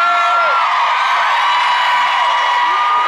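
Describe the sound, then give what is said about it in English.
A loud, dense crowd screams and cheers continuously, high-pitched shrieks and whoops blending into a sustained roar with no pauses across the whole stretch. “Raise, scream all you want.”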